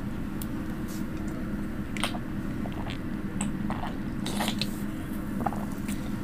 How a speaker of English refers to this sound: A brief intermission while I take a sip of my Spindrift. I wonder if this could be a little ASMR moment.